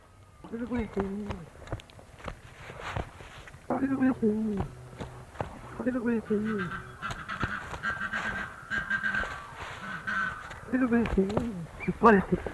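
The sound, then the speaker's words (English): A duck makes raspy, voice-like calls that mimic human speech, which its keeper says were "You bloody fool", a series of short harmonic phrases repeated about five times with pauses between, alongside a faint steady whistle-like tone in the middle. “He says that the duck was saying, "You bloody fool."”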